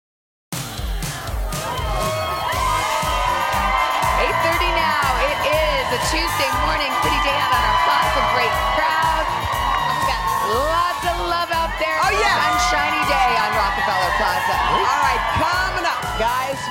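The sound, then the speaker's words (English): A large studio audience cheers, whoops and shouts loudly and continuously for the whole stretch, a dense roar of many voices with excited high yells rising and falling throughout. “I love our big crowds.”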